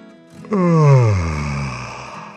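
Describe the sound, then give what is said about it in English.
A single drawn-out vocal yawn, imitated by a voice for Trenton, a little yellow tractor, rising into a loud open-mouthed sound and then sliding downward in pitch as it trails off over about a second. “As the people stepped down off the trailer and headed to their cars with their pumpkins, Trenton yawned.”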